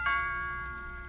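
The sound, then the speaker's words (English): A doorbell rings once, a bright chime struck at the start that lingers and slowly fades over a quiet background, with no voices. “You know, from now on, every time the doorbell rings, we'll sort of expect to see him back again.”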